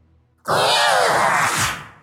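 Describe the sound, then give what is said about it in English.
After a brief hush, a voice lets out one long, loud, rasping roar imitating a massive monster at the city gates, harsh and wavering for about a second and a half before trailing off. “You can hear chomping from the one that is feasting, and the one at the gates lets out a loud roar.”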